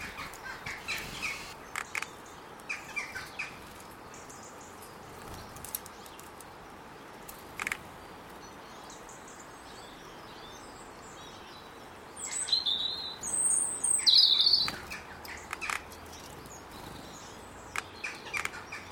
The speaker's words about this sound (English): Oh, two robins having a row. So we could hear their little, the wing beats and the pecking and their more intimate noises of the birds as they're feeding.